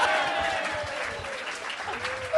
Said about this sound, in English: Why is it the biggest applause of the day?